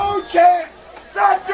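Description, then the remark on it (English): A stadium crowd at a football game cheering as the ball is set up for a kickoff, in two loud swells of massed, shouting voices, with a brief lull between the bursts of noise. “Crowds are getting into it.”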